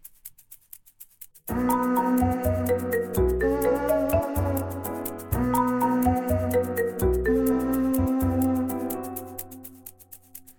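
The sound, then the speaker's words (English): A short, upbeat instrumental jingle kicks in after a brief pause, with a bouncy bass line, bright layered chords and steady ticking percussion, then fades out near the end. “Jingle, please”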